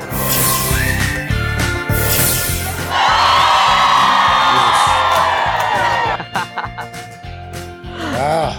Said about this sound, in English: Fun Friday morning, and our crowd is fired up.